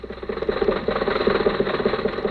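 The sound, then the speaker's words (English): The engine of Jack Benny's car, with the top down, driving with Rochester to the Santa Anita racetrack, runs steadily with a low, rhythmic throbbing and a faint rattly knock, holding a constant idle-like pace throughout with no voices. “So let's go back and pick up Jack and Rochester in the car.”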